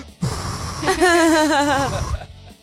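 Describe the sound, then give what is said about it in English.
A voice mimics heavy, muffled breathing through a hazmat mask, as if someone in a full hazmat suit and gloves were cutting hair: one long, raspy, wavering breath lasting about two seconds, fairly loud, with no other talking. “I'm the guy with the gloves on. I'm like cutting your hair, breathing like...”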